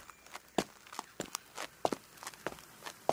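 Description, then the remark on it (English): Slow, uneven footsteps descending steep stairs down into a forest, each step a soft thud with an occasional sharper scuff, spaced irregularly over a quiet background with no talking. “Time to go down the stairs and into the forest. Oh, but a bit slowly because it's very steep.”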